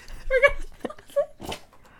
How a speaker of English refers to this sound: Sorry about that. Our dog had a sneezing fit. Sneeze attack.